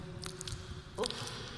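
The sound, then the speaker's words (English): Wet lip-smacking and mouth noises: a few soft squishy clicks and pops over a quiet background, with a slightly louder wet smack near the end. “Listen to my lips. Stop it, it's really disgusting.”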